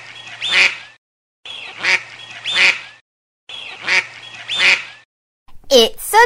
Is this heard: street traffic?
no